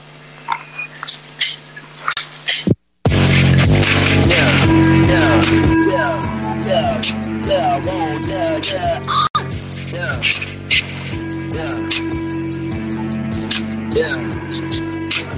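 A rap track starts after a brief quiet gap, with a driving, steady beat of sharp drum hits, a heavy bass line and a rapped vocal running loudly over it.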